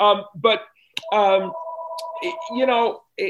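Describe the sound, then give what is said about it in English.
A phone rings for an incoming call with a steady electronic tone lasting about two seconds, partly overlapping a person talking. “That's probably him on the phone right now. He's calling and checking in because he knows I'm doing your podcast and he's very excited that I'm doing it.”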